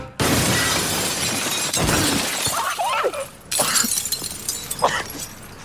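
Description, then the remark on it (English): Glass shatters in a loud crash as a man falls through it from a couple of stories high, followed by a scatter of tinkling shards and a few more sharp bursts of breaking glass over several seconds. “There's one scene where he falls through glass.”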